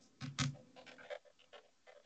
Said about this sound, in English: I can hear typing.